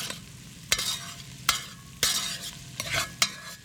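Food sizzles steadily in a pan while a utensil stirs and scrapes, with sharp clinks and clatters about every half second to second, fairly clear, no voices.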